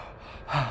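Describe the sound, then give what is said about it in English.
A single sharp breath recorded during ADR for a film soundscape, a quick gasping inhale that swells in the last half second with a breathy, airy rush, heard alone with no talking. “my original intention here had been that breaths completely take over the soundscape.”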